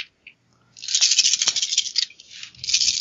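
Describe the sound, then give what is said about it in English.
A large handful of dice, rolled for a Reaction plus Pilot Groundcraft test, clatters and rattles across a hard surface for a couple of seconds, fairly loud, with a sharper knock partway through and no voices. “Yeah, with this many dice, it better work.”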